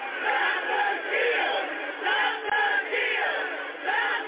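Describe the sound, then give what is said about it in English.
A large crowd of rioters at the Capitol shouts and roars continuously, many voices overlapping in a dense, surging din with rising and falling waves of yelling and no pauses. “the mob is battling a police line here, along the west face of the Capitol”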